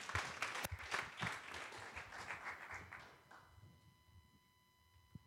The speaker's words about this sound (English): Yeah, let's give a round of applause.